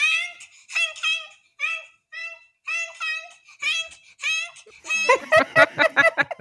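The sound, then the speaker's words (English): A child at home repeatedly honks like a goose behind people, about eight loud, high, nasal calls in a steady rhythm, then breaks into quick, breathy giggles at the end. “He's been honking like the goose behind every person all day in this house.”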